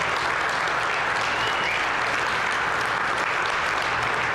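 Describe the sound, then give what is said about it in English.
A crowd claps and cheers steadily for their tech team throughout, a dense, loud wash of hand claps with raised voices mixed in and no break for the full few seconds. “Can y'all just cheer for our tech team?”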